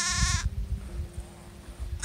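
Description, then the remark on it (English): A sheep lets out one loud bleat with a wavering, nasal tone, followed by a low rumbling background before a second bleat begins right at the end. “I asked for sheep, and I got sheep.”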